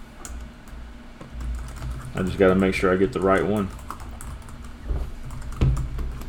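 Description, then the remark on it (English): Rapid clicking of keys on a computer keyboard runs throughout, fairly steady, while a man speaks briefly over the typing in the middle; the typist is posting a complaint about Ross Motorsports on their profiles. “So, what are you typing over there?”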